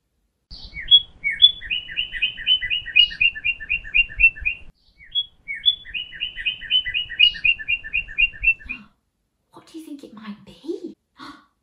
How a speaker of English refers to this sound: It's a bird, just a bird, birdie, birdie, birdie.